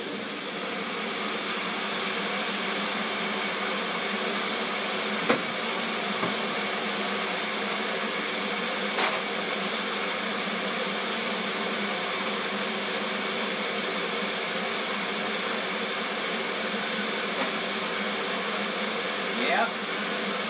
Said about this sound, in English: Might be loud, so, you know, feel free to close your ears. This is the magic bullet with ozonated water, banana, and peanut butter. Here we go.